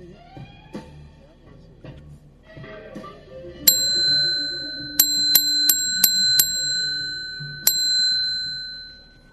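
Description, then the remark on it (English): A bell in a basement bar library rings out bright, struck about seven times in an uneven, quick cluster with one final strike, each tone shimmering and lingering. Faint low rumbling precedes the first strike. “That is the one of those wonderful bells, but this one happens to be in my library.”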